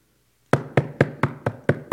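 A rapid series of about seven firm knocks on a door, evenly spaced and loud, starting after a brief silence and continuing steadily with no voices.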